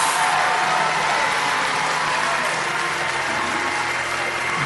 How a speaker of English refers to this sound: I want you to clap and shout tonight like you have some faith which you are about to release.